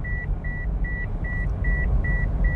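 A car's seatbelt warning chime, sounding because the seatbelt is not fastened, beeps steadily, seven short, even tones in a regular rhythm over the low rumble of a running vehicle.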